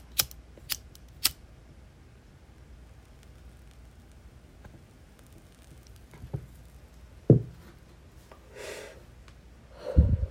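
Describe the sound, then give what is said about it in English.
A lighter is flicked three times in quick succession to relight a blunt, giving sharp clicks, followed by quiet rustling, a soft breathy hiss and a few muffled thumps near the end, with no talking. “I'll let this blunt go out again. Let me go ahead and re-sparker here.”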